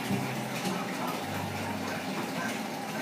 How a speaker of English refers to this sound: Get a little bit closer to that waterfall. Well, not as big as it looks.